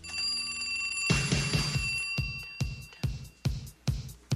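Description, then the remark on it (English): A telephone bell rings with a shrill, sustained metallic tone and a buzzy rattle at its peak, then stops as a steady run of heavy thumping beats takes over. “It's the buzz again. Oh, not again. Hang it up, lame-o.”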